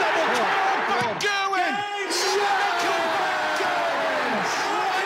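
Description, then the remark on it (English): A rowdy darts crowd at a final between Michael van Gerwen and Humphries roars and cheers throughout as Van Gerwen is on a nine-darter, many voices shouting and whooping together in a loud, continuous din, with occasional high yells rising above the mass of sound. “Watch how rowdy this gets.”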